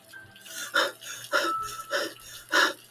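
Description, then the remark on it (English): Heavy, labored breathing, five ragged gasping breaths in quick succession with a steady low hum underneath and no talking, as a hand scrapes across a brick wall. “Labored breathing as a hand scrapes across a brick wall.”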